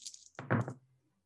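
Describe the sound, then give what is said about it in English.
A short rattle of three dice tumbling onto a hard table during a tabletop role-playing game, a brief burst of clicking knocks that settles quickly into silence, with no voices over it. “I got 3 dice.”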